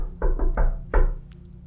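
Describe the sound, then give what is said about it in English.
Four friendly knocks on a door, three in a quick even run and then a short pause before a final rap, fairly loud with a low hollow thud. “Yeah, Calder's going to try the friendly knock.”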